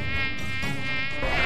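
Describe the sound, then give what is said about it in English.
A mosquito whines right up close, a thin, steady, high-pitched buzz that holds at a fairly loud level for the whole moment, with no voices or other sounds. “That means you can hear something like a very low bass note, or as loud as the buzzing of a mosquito flying right next to your ear.”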